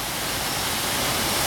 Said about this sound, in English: It's a waterfall, Mama